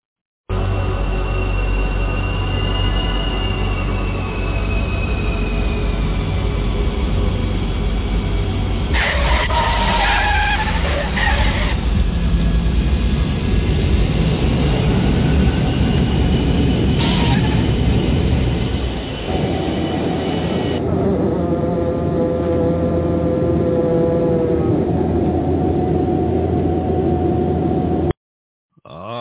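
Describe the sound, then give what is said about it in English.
An airplane landing: a loud, steady low roar with high whining tones and bursts of screeching tire squeal, the rumble shifting and easing before cutting off abruptly. No voices. “That sounds like a safe landing.”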